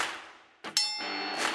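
A wrestling ring bell is struck with a loud, sharp clang, its bright metallic tone ringing on and sustaining to the end, with no voices present.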